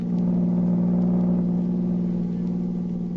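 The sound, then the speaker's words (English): A car driving to General Tiviage's headquarters in the morning, its engine giving a steady, loud low drone with a constant hum and faint rumbling texture throughout, no change in pace and no voices. “Next morning, Agent B-9 and his assistant, Rita Drake, drove to General Tiviage's headquarters.”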